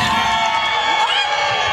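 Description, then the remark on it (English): A crowd erupts in loud, continuous shouting and cheering as the drumstick is announced winner over the ice cream sandwich in a treat vote, many voices overlapping into a dense, steady roar with a few higher yells rising above it. “The crowd does not agree.”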